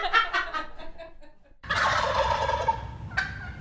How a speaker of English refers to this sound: Adult male turkeys, called gobblers or toms, will rip out a thunderous gobble to attract hens and let other toms know who's top boss. That gobble is famous, but did you know turkeys actually make a variety of sounds?